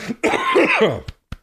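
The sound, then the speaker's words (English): A rough, raspy cough with harsh throat clearing, followed by two short sharp coughs, loud with no speech. “No, that's bong water I just coughed up.”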